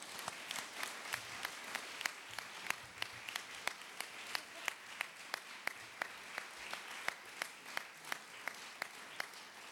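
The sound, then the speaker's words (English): An audience applauds steadily for about ten seconds, a dense wash of clapping with sharp, evenly spaced individual claps standing out, like a fairly regular beat. No one speaks. “So a round of applause”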